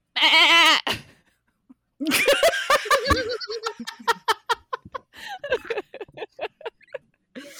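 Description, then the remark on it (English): A person imitates a sea goat with a loud, wavering bleat, then dissolves into bursts of rhythmic, stuttering laughter. “Because it sounded like you were saying myrrh as a goat, and that just makes sense.”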